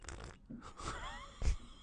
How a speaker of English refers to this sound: The old slurp. It's a British slurp, isn't it?